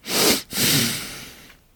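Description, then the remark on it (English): A short, airy sniff by a woman in two quick pulls, the second longer and tapering off, moderately loud with no talking around it. “The woman, she just sort of like sniffs.”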